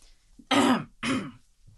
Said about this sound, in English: Hold on, I'm not done coughing yet. You know, I shouldn't eat a cheese thing before I record. That's what it is. Sorry, guys.